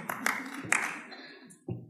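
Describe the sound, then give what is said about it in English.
A crowd applauds for C4 Farms in a brief burst of clapping, a steady wash of hand claps with a few sharper, louder claps standing out, fading slightly before a final thump. “Oh, we got clapping for C4 Farms.”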